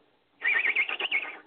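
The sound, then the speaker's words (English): A voice imitates a loud, high whistling chirp heard aboard a boat, one sustained, wavering tone lasting about a second with a quavering, whinny-like pulse before it trails off. “A whistling chirp, and real loud.”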